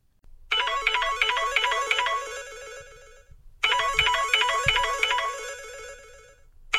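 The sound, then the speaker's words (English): A phone ringtone, Mum's phone, plays in two long bursts of bright, repeating electronic melody, separated by a short pause, fairly loud with no talking. “Hola, Senorita Mom's phone. Hello, who is this?”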